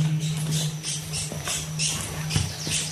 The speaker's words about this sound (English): Was that just me you played back, or was that the actual finch? It was a bird. A warbler finch. It was not a neuron.